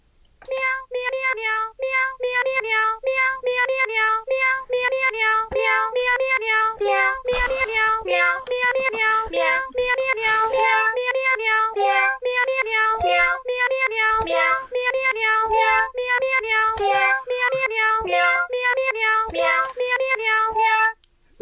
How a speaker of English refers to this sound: That was beautiful. Merry Christmas. Carol of the Bells, sung by Cats.